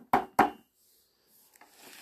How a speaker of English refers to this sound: Time's a wasting, Grumpy muttered, and he knocked firmly on the tall wooden door.